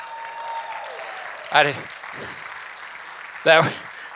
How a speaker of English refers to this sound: That really wasn't meant to solicit an applause.